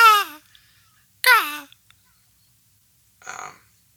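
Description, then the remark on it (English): A person imitates a seagull with two loud, descending squawking cries, a pause between them, followed by a shorter, rougher squawk. “probably could have done without the sound effects. But, I'm a seagull. That was a seagull”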